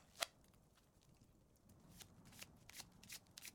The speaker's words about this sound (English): She shuffles the cards rather extravagantly.